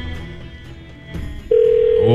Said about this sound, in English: All right, here we go. The moment of truth. This would be ultimate if she picks up the phone right now.